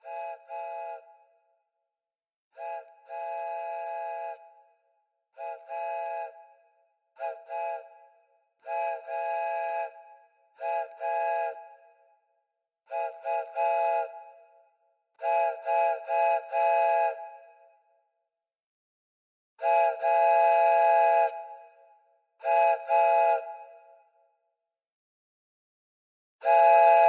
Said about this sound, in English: Train coming